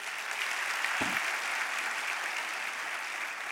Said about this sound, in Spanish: Date un aplauso ahora.